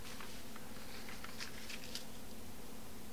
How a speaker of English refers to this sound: Let me turn this page here and go over to the next page.